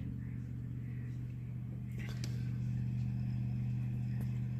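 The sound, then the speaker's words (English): A laptop cooling fan runs loudly while a game loads into its main menu, producing a steady, low droning hum that never lets up, with a few brief clicks and bumps partway through. “I'm gonna load all the way in, and you guys will be able to hear the fan, how loud it is.”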